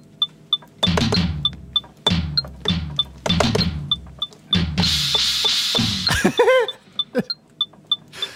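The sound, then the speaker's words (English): A cheap Beat Thang drum machine plays a looping beat using its bong sound: hollow, pitched bong tones over a steady pattern of high, bright ticks, with a brief warbling downward sweep near the end. “Choose a sound. Bong sound.”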